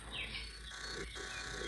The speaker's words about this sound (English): And we got bird songs on in the background. This is the Sleep Sounds ambience